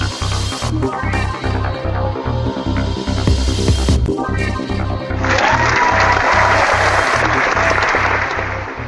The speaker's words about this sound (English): I was waiting for the clapping there